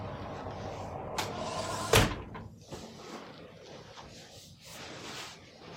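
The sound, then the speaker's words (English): A door swings shut with a sharp thump, preceded by a brief rattle and followed by quiet background noise and faint shuffling movement. “I'm going to just get off screen just for a second to close a door.”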